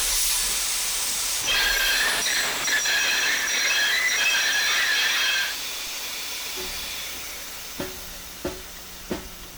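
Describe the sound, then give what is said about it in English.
A train rolls along the rails with a steady hiss and a high metallic wheel squeal that fades midway, followed by three evenly spaced clacks over the track joints. “Hold the train.”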